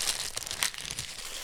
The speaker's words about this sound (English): So let me pop off this paper.